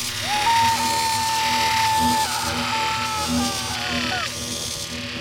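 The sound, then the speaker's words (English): A loud electric-chair buzz on the game show Electric Chair, set off when the host presses the control button after a countdown: a harsh, steady electrical drone with a whining tone running for about four seconds before sliding downward and cutting off. No one speaks over it. “if you, too, would risk the electric chair for $100 million, you could be next week's biggest celebrity”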